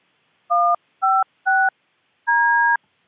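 A quick sequence of phone system keypad tones as a caller on hold is patched back into the call: three short, evenly spaced beeps followed by one longer beep, clear, with no voices.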